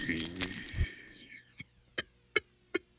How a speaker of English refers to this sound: Just clear my throat.